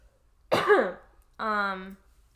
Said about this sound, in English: Sorry, I have to cough.